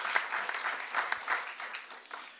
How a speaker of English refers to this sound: Hi, guys. Yeah, let's clap. Let's clap.